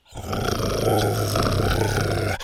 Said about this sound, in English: Buck stepped up to Dr. Rex and growled.